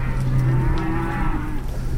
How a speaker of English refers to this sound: And as you can see, there's quite a lot of mooing.